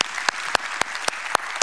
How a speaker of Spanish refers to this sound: ¿Por qué no le dan un fuerte aplauso al Señor por nuestro grupo de adoración?